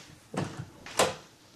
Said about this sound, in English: So then she bangs on the door. You open the door.